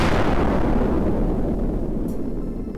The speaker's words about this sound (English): Beneath me, 34,092's explosion shook the entire rock.